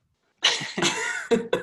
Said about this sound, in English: coughs loudly at that.